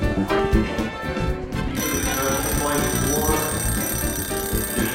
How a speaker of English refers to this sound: There's the bell. Right now the judges are reviewing the plates.